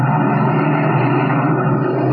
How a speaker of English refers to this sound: As our story continues today, we find him and his henchman Spike in their black sedan, slowing down along the road and searching for a likely place for what Donelli has in mind.